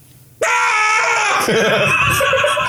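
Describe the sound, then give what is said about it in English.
A voice imitates a man screaming at people at Walmart: one sudden, loud, sustained shriek that bursts in after a brief quiet moment and holds strained and raw for about two seconds. “Well, he's screaming at people now.”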